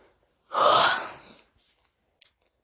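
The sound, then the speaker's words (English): A single long, breathy yawn, swelling quickly and trailing off over about a second, followed by a brief soft click. No one speaks. “Sorry, I keep having yawn moments. Yawn segment.”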